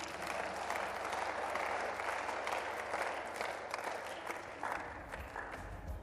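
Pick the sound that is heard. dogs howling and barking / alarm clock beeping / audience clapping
audience clapping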